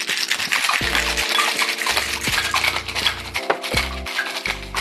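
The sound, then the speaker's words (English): A cocktail shaker with a margarita rattles hard and continuously with a rapid clattering rhythm, fairly loud, over a low steady hum in the background. “Are we good to shake? Yeah, go ahead and shake.”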